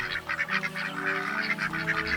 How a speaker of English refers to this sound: And sure enough, here are the ducks. Come on, guys.